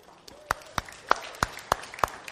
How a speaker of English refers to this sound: And, I mean, there's so much applause. And me, I'm doing a great job, so just keep it up.